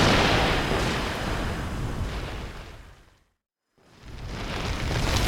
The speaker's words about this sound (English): Whoa, now this is more like it. Look at that angry old man. He's like Gandalf gone mad. Whoosh! With all the thunder and lightning.